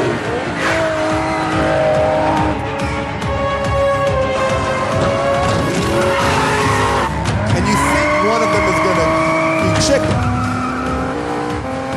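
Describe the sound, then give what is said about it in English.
Loud, continuous tire squeals and skidding from several cars, with engines roaring and screeching tones rising and falling over twelve seconds of chaotic vehicle action, from a film scene in which Vin Diesel and The Rock drive cars into each other. “Just picture Vin Diesel and The Rock just driving fucking cars into each other.”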